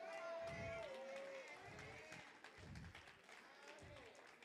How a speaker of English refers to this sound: Now, that's about 500, y'all. I heard 36 claps.